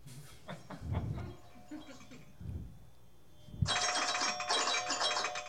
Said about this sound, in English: It's 19 minutes after the hour, which means it's almost 4:20 somewhere. Do you have that alarm for every hour? Yes. How am I going to know if I don't have an alarm going off?